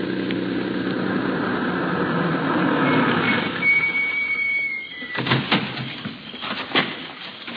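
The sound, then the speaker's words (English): A car engine rumbles steadily as it turns in at a hotel, a thin high squeal sounds as it slows, then the engine dies away and a few soft clunks follow in the quiet. “I can see a car parked out in front. The place seems to fit the description of the hotel. Well, let's have a look. I'll turn in.”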